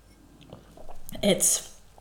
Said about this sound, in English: Let me drink water.